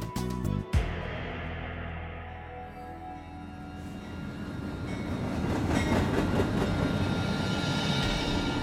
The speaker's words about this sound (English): Now let's travel back to the early morning of Saturday, July 21st, 1877, when General Latta's westbound express train approached its destination.